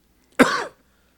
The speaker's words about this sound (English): Yeah, don't cough into the mic, please.